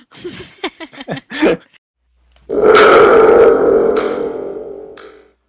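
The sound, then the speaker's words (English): A few short voice-like bursts, then a thunder tube lets out a loud, sustained rumbling roar with a springy, metallic buzz that swells and slowly fades over about three seconds. “I have a thunder tube.”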